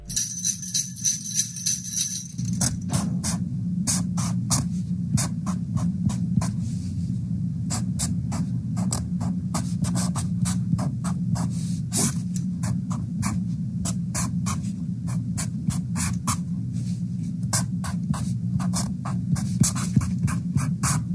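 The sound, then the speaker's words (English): A man writes out a math equation with a Sharpie marker, its squeaks and scratches sounding like Jingle Bells. The marker moves across a surface in quick, rhythmic bursts of sharp, high strokes, repeating steadily for about twenty seconds over a constant low hum, with no talking. “Here's the audio of Jingle Bells being played by Sharpie as a man writes out his math equation.”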